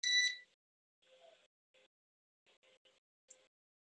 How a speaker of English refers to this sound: Sorry about that, folks. One of my stupid neighbors' alarm.